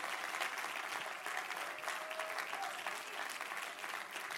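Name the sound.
audience clapping hands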